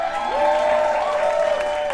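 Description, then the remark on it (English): A crowd applauds steadily and loudly throughout for city-planning leads who stand as their names are read, with dense overlapping claps and a few sustained cheers or whistles rising above them. No one speaks. “I don't want all my leads to come up, but I will read off their names so they can stand up and you can give them a big round of applause.”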